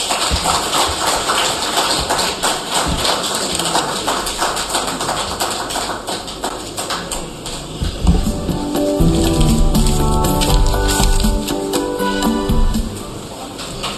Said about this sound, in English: Another round of applause for Honorable Minister.